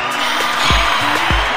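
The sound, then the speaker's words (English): A short crowd-cheering sound effect: a dense, steady roar of cheers, punctuated by two deep booming bass hits about half a second apart. “That's our crowd.”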